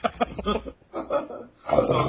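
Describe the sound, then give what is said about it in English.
A loud, throaty burp comes out in rough, rumbling bursts with short pauses between them. No talking is heard. “I just burped really loudly.”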